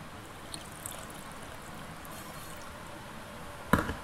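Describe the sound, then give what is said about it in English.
Water pours steadily into a cooking pot with a continuous splashing rush, then a single sharp metallic clunk near the end. No one speaks. “Okay, let me just add my water in.”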